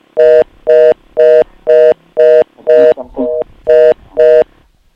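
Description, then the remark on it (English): A rapid series of about nine loud, evenly spaced electronic phone beeps, like dialing tones, on a caller's phone line during a call, with a brief burst of muffled voice breaking in partway through. “Yeah, sorry, we couldn't hear you because there was this phone line beeping.”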